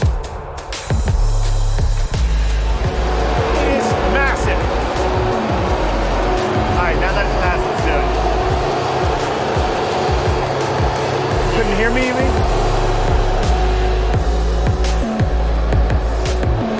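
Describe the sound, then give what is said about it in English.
A heavy truck engine drones loudly and steadily as it drives uphill toward the high site at ALMA, its low rumble rising and dipping in pitch as it labors along, with wind and faint voices mixed in. “Yeah, it's coming up on the truck.”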